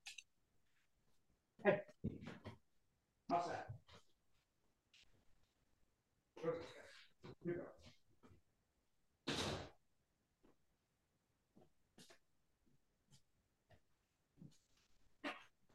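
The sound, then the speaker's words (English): Dogs shuffle and stir while a door slides open with a brief rushing swoosh to put the dogs outside, followed by scattered clicks, paw taps and faint whines. “Hey, let me put the dogs out real Yeah, quick.”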